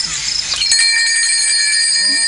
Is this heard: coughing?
no